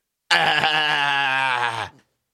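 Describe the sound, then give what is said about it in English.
A single loud, sustained ewe bleat lasting well over a second, strongly harmonic with a slight wavering quality, heard alone before cutting off. “Oh, it's a female sheep.”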